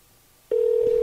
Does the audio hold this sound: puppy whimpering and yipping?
no